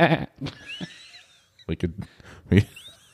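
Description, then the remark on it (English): A person imitates a goat's bleat with several short, wavering bursts, spread across a few seconds with brief pauses between them. “Do you want to use like a goat?”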